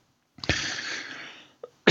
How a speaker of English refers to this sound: Pardon, I don't know what's going on here while I'm coughing today. It might be allergies.